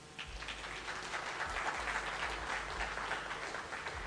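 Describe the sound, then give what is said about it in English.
A crowd bursts into sustained applause, many hands clapping in a dense, steady wash of sound that holds at an even level for about four seconds, with no one speaking over it; the applause answers a question asking how many in the audience are married. “By round of applause, how many here are married?”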